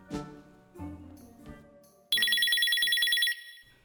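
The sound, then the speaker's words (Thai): A mobile phone ringtone starts suddenly and loudly after a few soft tonal notes, a bright, rapidly warbling electronic trill that repeats steadily for about a second before cutting off. “ผมมองดูเบอร์ที่โชว์บนหน้าจออารมณ์ที่เคยขุ่นเคืองก็เปลี่ยนไปเป็นสดชื่นรื่นรมเพราะคนที่โทรมา”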